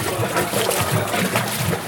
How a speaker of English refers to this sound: And we're going to make brine right now. Take some salt. We're going to add the salt to the water. And then we just stir it up.